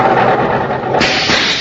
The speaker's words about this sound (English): What makes the engine pop like that? I'm using high-octane kerosene.